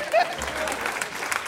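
Audience applause: a steady wash of many hands clapping at once, fairly loud and dense throughout, with no single claps standing out.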